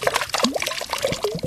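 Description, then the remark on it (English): Fish poured through a PVC pipe into the water of a loon pen, mimicking the slapping sound adult loons make with fish on the water, making a busy run of wet splashes, gurgles and plops that tumble over each other without pause. “By pouring fish through a PVC pipe into the pen, the team found that they could mimic the slapping sound.”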